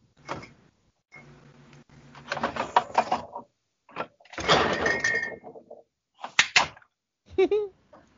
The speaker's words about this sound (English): No, just the refrigerator door slipped out of my hand and was slammed against my wall.